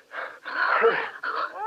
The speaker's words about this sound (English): That howl again. That's coming from our room,